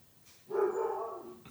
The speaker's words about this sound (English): No, it's just going to be annoying for a few moments since he's decided there's something out there to bark at. Okay. My guess is it's a horse and buggy going by on a Sunday.